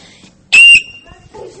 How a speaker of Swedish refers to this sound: Oj, det var brandlarmet. Det där var brandlarmet. Det brukar pipa ibland.